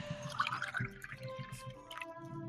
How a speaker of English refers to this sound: So, let's just have a pour of a drink, shall we? Oh, cracking. Hang on, then.